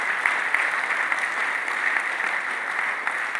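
An audience claps steadily, many hands blending into a dense, even wash of applause that holds at a constant level throughout, with no voices standing out.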